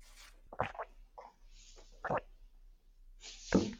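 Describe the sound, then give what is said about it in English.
Short rough throat-clearing bursts, then a quiet slurping sip and a soft swallow, ending with a sharper breathy rasp. No speech. “Let me just clear my throat and you take a little sip of water.”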